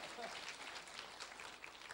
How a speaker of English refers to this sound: All young adults. Beautiful, good looking. But give them a big applause. They haven't done anything yet, but give them a big applause.